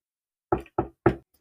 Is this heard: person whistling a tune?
no